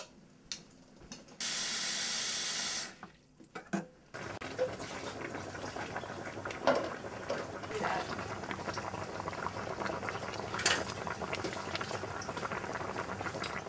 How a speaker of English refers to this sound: what we're gonna wanna do is take this over to the sink. Fill it up with water till it covers all the sweet potatoes and put it on the stove until it starts to boil.